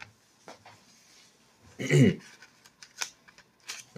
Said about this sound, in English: There we go. Turning the page.